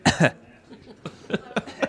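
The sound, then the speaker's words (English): A forceful double cough at the start, made on request, followed after a brief pause by a few shorter, sharper coughing bursts. “I think he's supposed to cough, though. Cough.”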